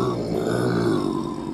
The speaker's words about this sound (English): Are you growling at me?